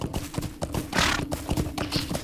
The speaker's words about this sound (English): The mist is just completely dampening all the sounds. I can only hear my own horse.